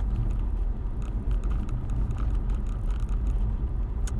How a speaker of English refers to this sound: This fucker's with a power wash right by my fucking car